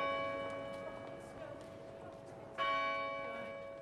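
A city centre church bell in Kilkenny rings with long, sustained harmonic tones, one stroke fading before a second louder strike near the end, set against faint background noise and occasional clopping.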